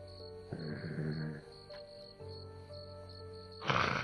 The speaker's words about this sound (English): I'm going down with him because I got a pretty good idea of what may be in that cage. All right. What does it do as I get closer? Just growls?